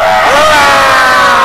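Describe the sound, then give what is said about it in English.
Several voices scream together in one loud, sustained Friday scream on the live show The Break Room, a dense wall of high-pitched yelling lasting a second or two before cutting off. “Let's all break out a quick little Friday scream.”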